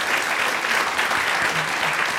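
An audience claps in a steady round of applause, dense overlapping hand claps forming a loud, even wash of noise with no one speaking over it.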